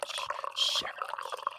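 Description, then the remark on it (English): Beer pours into a glass in one short, steady gush with a bright fizzy hiss, surrounded by low background murmur and faint clinks. “Well, I noticed the chat quieted down, so I had to do something, a little ASMR trigger there for them. That was a big old pour.”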